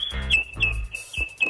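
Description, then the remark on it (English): A pet bird chirps, a thin high whistle broken by four or five quick chirps, with soft low thumps and rustling underneath. “By the way, that's a lovely bird you have.”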